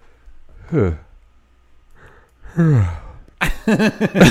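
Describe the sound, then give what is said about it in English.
A person yawning, with two drawn-out voiced breaths that slide downward in pitch, followed by a burst of louder vocal sounds at the end. “I just had to yawn right there.”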